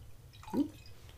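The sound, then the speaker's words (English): Wine is poured into a glass as a refill in one brief liquid glug, a quick rising gurgle-splash lasting a fraction of a second, over a steady low hum with no talking. “Would you like a little more wine?”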